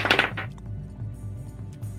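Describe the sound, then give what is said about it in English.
A short, bright clatter of dice tumbling across a hard tabletop, loud, then settling quickly into quiet with a low hum in the background. The dice are rolled for a dexterity saving throw in a tabletop role-playing game and land on a 1. “I rolled... I thought it was a 20, but it's our dice, so it's a nat 1!”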